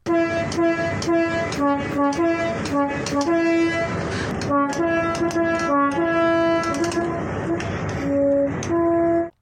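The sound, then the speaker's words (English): A loud train horn, operated manually by a lever, plays a melody, its blaring notes stepping up and down in pitch over a steady rumble and clatter of the moving train, sustained for several seconds. “He's got a mate who's a rail enthusiast, and apparently it's done manually by a lever, and it's even possible to play a tune on it.”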